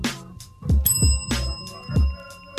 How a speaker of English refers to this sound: That ain't sound right. Is the bell fucking broke